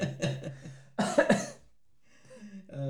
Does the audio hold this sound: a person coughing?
yes